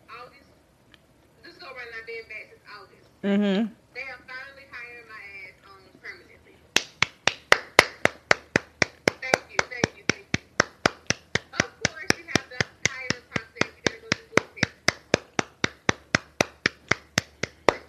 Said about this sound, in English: You know how white people don't know how to stop clapping? They keep going.